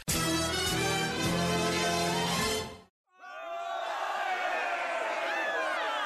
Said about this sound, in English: And as you approach, you hear the roar of a crowd. You get closer and you realize that the building is surrounded by protesters.